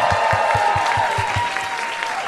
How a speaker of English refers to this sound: And you can hear the kiss. And there's a kiss, and the crowd goes wild. Yay!